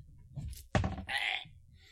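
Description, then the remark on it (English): A thrown pencil strikes the dungeon master of a tabletop game in the chest, near his heart, with one sudden, sharp thunk, followed by a brief bright clatter that fades. A low, quiet rumble sits underneath, and no one speaks. “That pencil almost went for his heart.”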